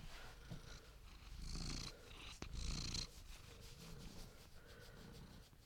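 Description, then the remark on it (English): A cat purrs, a soft, steady rumble that swells and eases with each breath, continuing throughout with no one speaking. “I'll give some purrs.”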